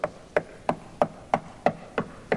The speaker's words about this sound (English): You get a loud knock like that on your door in the middle of the night, it's somebody important, probably. People don't ordinarily disturb people after dark with loud knocking.